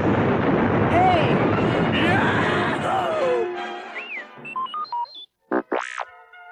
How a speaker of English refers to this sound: Han hollered to Luke. Get to a laser cannon, kid! We've got four Imperial TIE fighters chasing us! Huh? Luke, still stunned by Ben's disappearance, managed to fire the cannon repeatedly until he and Han had shot down all their pursuers.